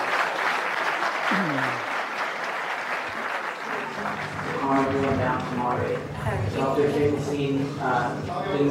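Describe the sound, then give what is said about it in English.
A crowd claps steadily throughout, a dense, loud wash of applause. About halfway through, raised voices and shouting join in and continue over the clapping. “Can I just calm the audience?”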